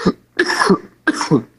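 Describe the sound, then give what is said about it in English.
Two or three harsh coughs in quick succession, each a loud raspy burst separated by brief pauses, with no talking around them. “As you cough there, since we're.”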